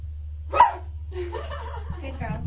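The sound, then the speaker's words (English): A woman, asked to bark like a dog, imitates a dog with a single sharp, loud bark, followed by people talking casually over a low steady hum. “I think you have to ask her to have her bark like a dog.”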